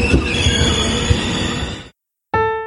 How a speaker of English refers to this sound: But everything used to fade away when the train suddenly gave a jerk with a screeching sound.